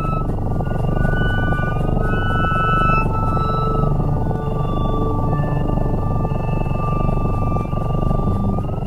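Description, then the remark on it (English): Music made for cats, with purrs and chirps put into the songs: long, sliding high tones and brief chirp-like notes over a steady, buzzing purr-like rumble. It plays continuously at an even level with no voices. “He's noticed that cats don't seem to give a crap about people music, so he puts purrs and chirps into his songs, sounds that are part of a cat's world.”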